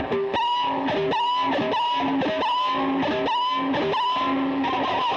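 A distorted electric guitar makes high, squealing tones from the high E string pressed against a pickup that is switched off. Sustained notes shift pitch in repeated stepping phrases, loud and continuous with no talking.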